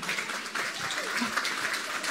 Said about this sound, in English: Okay, give Tom a clap for that.